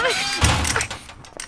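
A heavy thud as a man rams a door from the other side while girls inside try to hold it shut, followed by a brief rattling shudder, with a voice briefly audible at the start.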